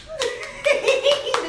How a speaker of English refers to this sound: I'm clapping for y'all. I'm clapping for y'all.